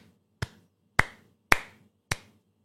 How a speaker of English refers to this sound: That was me giving her a little applause here on the show. All right, we'll give her one of these. That's better.